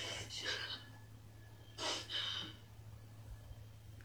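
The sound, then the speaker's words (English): Two short, breathy sniffles, fairly soft, spaced about a second and a half apart, over a steady low hum with no speech. “First of all, stop sniffling.”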